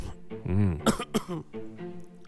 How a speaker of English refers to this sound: Uh-oh, you're coughing. You're coughing